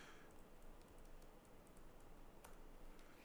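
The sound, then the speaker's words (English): Rapid, irregular clicking of keys on a computer keyboard as someone types a search about sea lions, fairly quiet, continuing steadily for a few seconds with no voices. “I'm trying to find this thing, sea lion. Just typing it.”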